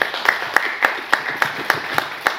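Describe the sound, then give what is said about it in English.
An audience claps in a steady, even rhythm, about nine sharp beats in quick succession over a bed of softer scattered applause, fairly loud with no talking. “So, go ahead, clap them up.”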